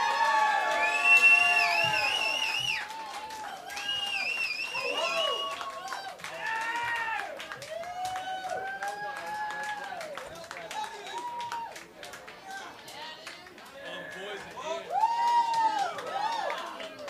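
A crowd at the C-Note in Hull cheers and applauds a band loudly and continuously, with rising and falling whoops and high whistles riding over a dense wash of clapping for about seventeen seconds.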